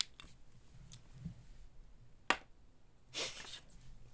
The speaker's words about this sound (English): And excuse me while I drink some water.